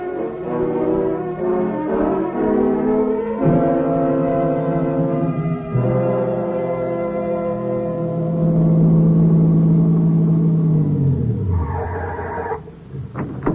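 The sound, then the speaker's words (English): A car engine turns over and revs, its droning pitch climbing and shifting through gears, then sinks lower as the vehicle pulls away. No one speaks. “You get in the car, drive down the road to the gas station, and use their phone, huh?”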